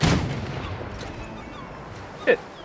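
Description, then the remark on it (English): A video game cannon fires with a loud, sharp boom that trails off into a fading rumble, followed a couple of seconds later by a shorter, quieter blast. “It's a fucking cannon.”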